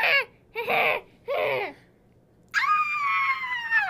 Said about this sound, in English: I think I just heard a little girl scream.